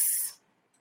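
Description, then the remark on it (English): A short, bright burst of static-like hiss, noise from an electronic recording device, lasts about a third of a second, then drops away into near silence. No voices are present. “So major noise coming across an electronic recording device is heard as a hiss.”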